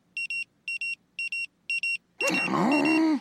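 A court-ordered electronic ankle monitor beeps in four evenly spaced pairs of shrill tones, then a loud, rough rush of noise cuts in and takes over. No one speaks.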